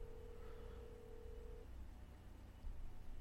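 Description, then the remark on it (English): A single steady ringback tone from an outgoing Skype call sounds for about a second and a half, then cuts off, leaving a faint low hum and background noise on the line. “Yeah, it just seems to be ringing and ringing.”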